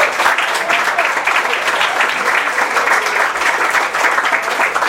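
A crowd applauds steadily for several seconds, a dense, even wash of many hands clapping at a fairly loud level with no pause or lull.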